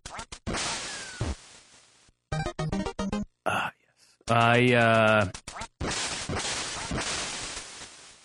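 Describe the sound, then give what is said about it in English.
Duck quacking sound effects from the retro video game Duck Hunt: a series of short, loud electronic quacks and buzzy bleeps, mixed with noisy bursts and a wavering, chiptune-like squawk, with no talking. “I really like the game Duck Hunt, but recently my girlfriend told me that I spend too much time playing Duck Hunt.”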